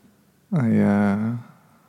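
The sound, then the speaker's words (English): A single short, loud siren-like wail in Los Angeles on a day of celebration, rising then holding a steady tone for about a second, sounding like a voice imitating an emergency vehicle siren. “Sirens too.”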